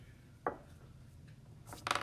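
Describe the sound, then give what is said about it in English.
Dice rattle and clatter across a hard tabletop: one sharp click, a short pause, then a quick burst of bright tumbling clicks as they settle. The sounds are fairly faint and there is no talking. “Getting out the dice, it's getting serious, boys.”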